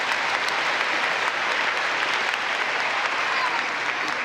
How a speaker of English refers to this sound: So, go ahead and clap if you're going to clap.